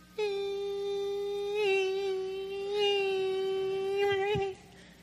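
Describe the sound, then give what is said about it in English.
A voice hums a thin, steady, high-pitched whine for over four seconds, imitating a mosquito's buzz, with slight wavering swells in pitch before cutting off abruptly. “I'm like, oh, man, I hope that's not a mosquito.”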